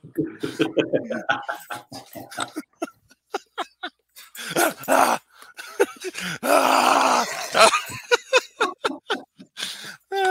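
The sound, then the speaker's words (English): An excited beagle named Butter grunts, groans and whines in rapid, uneven bursts, with a few louder breathy stretches mixed in, while people speak intermittently in the background. He is being told to sit for a Rice Krispie treat. “Now he's going psycho.”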